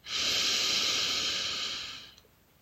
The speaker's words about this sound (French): Imagine inhaler l'essence des merveilles célestes, une par une, avec chaque souffle lent et réconfortant.